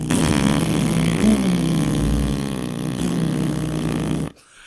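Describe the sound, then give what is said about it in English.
A voice imitates a race car with no muffler, car number 45 coming around the final bend of the racetrack at the Indy 500: a loud, raspy, buzzing drone held for about four seconds with a slightly wavering low pitch, then cut off abruptly. “No muffler, sounds like a man making fart noises into a microphone.”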